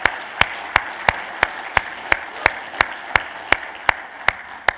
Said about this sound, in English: So we got lots of people here in live here in this morning, and then there's lots of people who are joining us online. Can we have a big round of applause for everyone who's joining us online from those who are here?